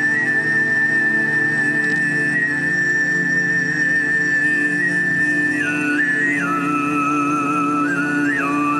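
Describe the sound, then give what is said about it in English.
Tuvan throat singing: a steady low drone with a piercing whistle-like overtone held high above it, shifting pitch in small steps near the end, continuous, with no talking. “Here's some a quick Tuvan throat singing.”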